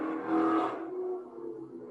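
A car sweeps past, its engine hum swelling loud in the first half-second and then easing off into a lower, steady drone as it moves away.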